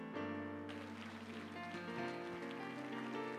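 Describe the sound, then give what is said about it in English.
A crowd at First Pentecostal Church in Palm Bay claps steadily in a dense, crackling patter to welcome a visiting speaker, with sustained organ-like chords ringing underneath throughout. “Would you put your hands together and make Brother Joel Urshan welcome?”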